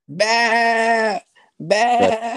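Two loud goat bleats, the first long and steady, the second after a short pause, rougher and wavering, with no talking.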